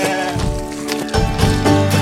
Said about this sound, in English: Hello, sheep. Tons of sheep out where we live in, all ready to pop with babies.